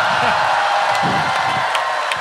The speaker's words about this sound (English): Really? Really? You're going to applaud that cheap and easy of a reference